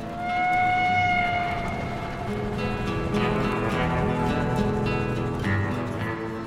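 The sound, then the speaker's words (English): A steam train sound effect chugs steadily along, its rhythmic puffing over a low, continuous rumble, with a sustained whistle-like tone sounding early on. No voices are heard. “Folks in these parts don't take kindly to strangers asking about it, but when the full moon is bright and the night air is calm, you can hear it chug, chug, chugging its way between Denver and Boulder.”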